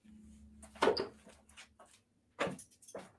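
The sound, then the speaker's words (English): A man doing laundry at his house: a few hollow thumps and clatters, like a washer door or lid being handled, over a steady low hum, with quieter rustling between the bangs. “And now we can hear him doing his laundry.”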